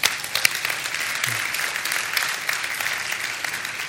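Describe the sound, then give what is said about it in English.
An audience at Vineyard claps steadily for fathers on Father's Day, a dense crackle of many hands that holds at an even, fairly loud level for the whole stretch with no voices breaking through. “One more round of applause to fathers.”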